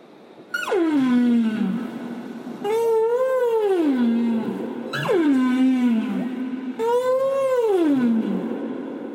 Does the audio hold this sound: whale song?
yes